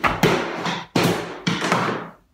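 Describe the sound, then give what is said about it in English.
A heavy object tumbles down stairs, hitting with three loud, booming thuds at uneven intervals, each ringing out briefly before the next. No voices are heard. “Something heavy fell. Because you can hear it go down the stairs.”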